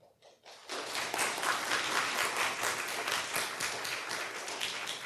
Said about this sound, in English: We'll give him another round of applause later, too.